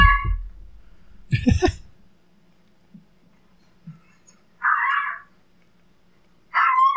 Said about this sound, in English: Oh, here's my fucking shit bird dog. Dude, the power in that tail.